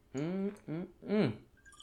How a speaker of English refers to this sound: Gotta take a little swig from our bottles here.